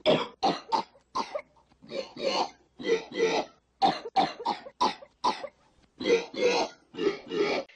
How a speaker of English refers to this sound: But like specific bits, I like when he's playing the coughing sounds on the piano and then he just starts playing a tune in coughing sounds.